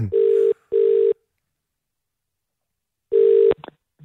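A phone call being placed: three loud, steady electronic tones, two close together and a third after a long pause, like a line ringing, with no talking.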